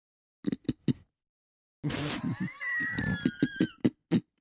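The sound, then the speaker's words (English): A person mimics a pig: three quick snorting grunts, then a loud rough snort that rises into a drawn-out squeal, followed by a run of choppy oinks. “No, I don't have a pig sound effect either.”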